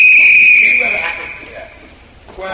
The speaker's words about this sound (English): Yeah, blow the whistle. I'll blow the whistle.